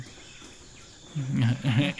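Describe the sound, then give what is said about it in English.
Faint background hiss gives way to a couple of loud, harsh, wavering squawks in the second half from birds flying overhead in a thick forest with palm trees, rising and falling in pitch, with no talking. “Oh, all types of ill-tempered birds fly overhead.”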